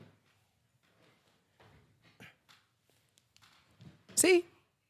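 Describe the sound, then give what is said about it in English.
A chair being raised and adjusted: soft scattered clunks and shuffles, then a short, loud creaking squeal near the end, with muffled voices faintly in the background. “She's struggling trying to get this chair up.”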